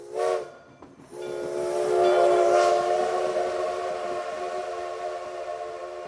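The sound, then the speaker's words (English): A train sounds its horn, a short blast followed by a long sustained one, over the steady rumble and hiss of the passing train, loud, with no voices. “Keep in mind that although the Suffolk County town has its own train station to Manhattan for over 150 years, it's a long daily commute.”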